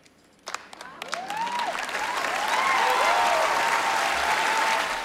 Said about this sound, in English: Okay, so the applause there was really interesting, right? Yes. She says that, and people sort of stopped, and then they clapped a little, and then they clapped even louder.